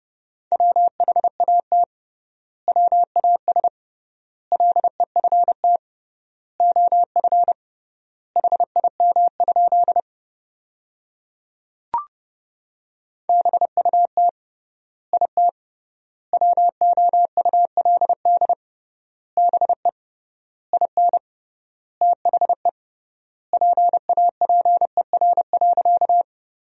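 Morse code sent at about 30 words per minute, spelling out sentences built from the 300 most common words with tripled word spacing: a steady mid-pitched beep keyed in quick dots and dashes, grouped into words with wide pauses between them, plus a single click during one long gap.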